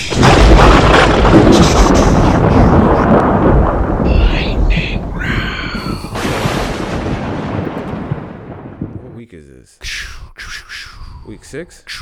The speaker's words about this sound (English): Oh, we gotta make the lightning noise first.